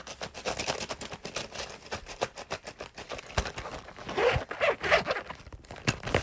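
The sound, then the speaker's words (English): A zipper on a small strawberry milk carton pencil case is pulled open and closed in quick, rasping bursts, with clicking tooth rattles and no talking. “Then we have my beloved strawberry milk carton pencil pillows.”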